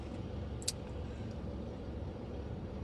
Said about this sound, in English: First, hold on, truck. Oh, this truck is creeping into a red light.